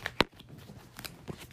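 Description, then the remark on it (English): Tarot cards are drawn and slid from a deck, a sharp papery snap followed by a few softer rustling flicks over quiet background, with no talking. “Let's get a couple more cards.”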